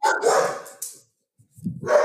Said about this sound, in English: The dog agrees with you.